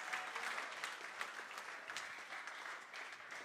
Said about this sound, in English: No, your clapping does not look like what I'm talking about.